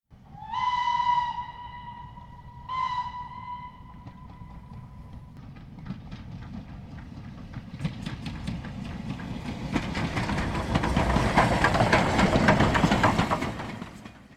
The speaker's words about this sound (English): Sheila Wright boarded the train from Brisbane to Toowoomba and took a seat by the window